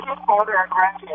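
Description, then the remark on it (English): Muffled, band-limited speech from a radio playing in a phone caller's background, running a few minutes behind the live broadcast and bleeding through the phone line, with a steady low hum underneath; brief and fairly loud. “Hello, and we'll ask you if you can just close your radio in the background or phone in the background.”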